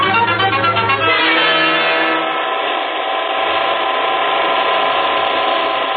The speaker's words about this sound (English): We're going for a fast car ride.